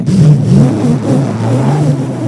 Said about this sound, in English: He said, I am exciting the generator. He said to me, that generator needs a little bit of energy, just a little bit, for the whole engine to come on. So after this for a while, then he held the key and he turned it.